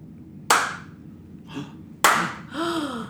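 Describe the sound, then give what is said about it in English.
Two loud, sharp pops of balloons being aggressively popped, about a second and a half apart, each bang followed by a brief breathy vocal sound, the second one a short rising-and-falling squeal. “Who's popping my balloons? I don't know. Aggressively popping them.”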